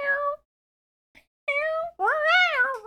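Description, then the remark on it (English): A cat meows three times, first a short mew, then two longer drawn-out cries with a rising and falling pitch, separated by brief silences. “Can you get that cat out of the way real quick?”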